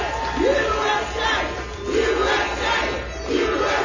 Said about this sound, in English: Like in Staten Island, where thousands of Trump supporters came together without the president there to rally for Trump. Yeah. Get well soon, Mr. President. That's what they're yelling. And there's a sea of them in New York City.